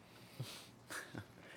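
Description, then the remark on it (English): A few faint dog barks, three short bursts spaced unevenly over a second and a half, with no talking. “The dogs, they're dating it, man. They're cheering.”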